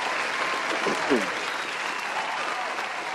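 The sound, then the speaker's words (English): A crowd applauds steadily throughout, a dense wash of clapping, with a brief cheering shout rising out of it near the middle. The applause stays fairly loud and even for the whole few seconds. “Crowd loving that one.”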